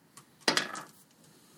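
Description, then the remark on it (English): Damage dice clatter across a hard table, with one sharp initial hit followed by a quick flurry of smaller rattling clicks that settle within about half a second. No talking. “Okay, roll your damage dice twice then.”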